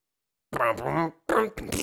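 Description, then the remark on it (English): A voice blurts out a buzzy, brassy farting-trumpet imitation in two loud, wobbling bursts separated by a short pause, unaccompanied. “you're probably going to hear the farting trumpet music of Josh Johnson coming on the field”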